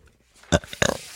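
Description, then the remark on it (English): A loud, guttural burp in two quick croaking bursts, the second a bit longer and rougher, with a low rumbling throatiness and no talking around it. “Burp in my face. Ew”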